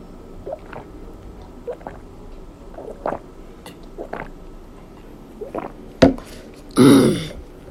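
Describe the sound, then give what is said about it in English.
Someone drinks their first water of the morning: a series of soft, wet gulps and swallows at an uneven pace, then a sharper smack and a louder, breathy exhale at the end. “My first water for the morning.”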